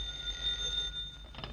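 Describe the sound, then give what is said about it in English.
A telephone rings with a high, steady electric bell tone that sustains through most of the moment, fairly quiet against a low background hum, with no voices. “answer the phone, someone.”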